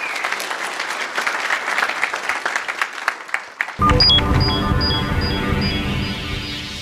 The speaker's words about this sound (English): So a big round of applause for Sule and the panel. A really interesting panel this year.